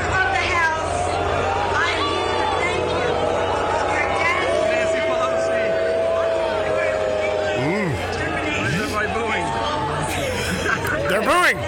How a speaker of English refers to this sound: This is Nancy getting booed by New Yorkers.